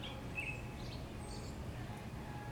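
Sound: birds chirping outdoors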